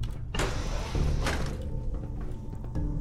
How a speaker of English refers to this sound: Opened up a door.